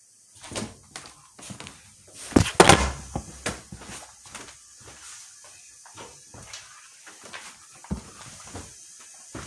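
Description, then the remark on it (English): A phone is knocked over while someone reaches for a charger, a loud clattering thud amid a jumble of knocks and fumbling handling sounds that keep ticking and bumping sporadically afterward. “I knocked over my phone trying to get my charger.”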